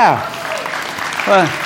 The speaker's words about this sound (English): Yeah, appreciate that. Like, you don't have to clap for me, like, for that.